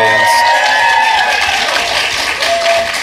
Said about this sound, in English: Now when you go, if you're here, when you go to listen to the show, you can try to pick out each of your own claps and cheers. Oh, that was me.